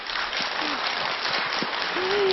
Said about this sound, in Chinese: 我们再以热烈的掌声感谢堪布。